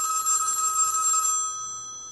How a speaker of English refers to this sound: One day I get a phone call, and it's Michael.